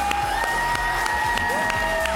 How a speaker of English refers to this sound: It's a sleigh, and I've never had people clap for me shoveling the snow, so it feels really good.